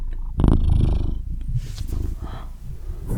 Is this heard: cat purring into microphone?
yes